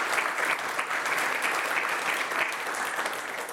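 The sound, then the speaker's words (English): Steady audience applause fills the whole stretch, a dense wash of many hands clapping at an even, sustained level without any voices standing out. “Let's give them a round of applause for getting through the”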